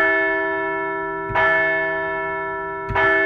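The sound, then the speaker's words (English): A large, resonant bell rings alone, struck twice about one and a half seconds apart, each stroke blooming over a long, humming sustain that never fully fades, rung to celebrate a Phillies baseball win. “Yeah, so we picked up losses 11,252 and 11,253 of all time, but we're ringing a bell for one win and a whole lot of home runs for the comeback kids.”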